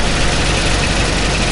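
A 1952 Bentley R-Type with a 4.5 litre engine and a 4-speed automatic runs at a steady idle. It makes a loud, continuous low rumble with a broad mechanical hum, and no one speaks over it.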